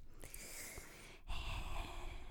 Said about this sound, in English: 1 second. Water. Brought to you by ASMR water with my breathing.